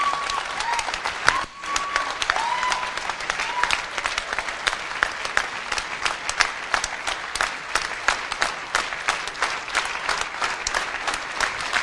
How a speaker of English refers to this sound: Keep clapping.